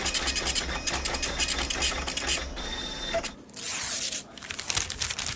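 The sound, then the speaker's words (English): A printer printing a report runs steadily, its mechanical whirring and rapid clicking carriage pulses broken by a brief hiss and a short pause before the printing rhythm resumes. “Printing report.”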